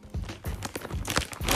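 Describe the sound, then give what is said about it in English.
A packet of spearmint chewing gum is dropped into a bag: a run of crinkly plastic rustles and soft, dull thumps in several uneven bursts, with no one speaking. “And then I got one packet of spearmint chewing gum. Yeah, let's place that in as well.”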